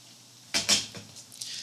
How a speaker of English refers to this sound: Larry slams the phone into the cradle, almost breaking it.